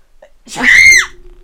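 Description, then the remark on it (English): A single loud sneeze bursts out with a sharp breathy onset and a strained, voiced cry that falls away within about half a second, leaving a faint hum behind. “I'm going to sneeze.”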